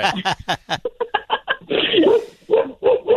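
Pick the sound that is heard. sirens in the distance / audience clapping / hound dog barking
hound dog barking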